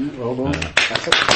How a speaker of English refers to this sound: Well done. Spontaneous applause.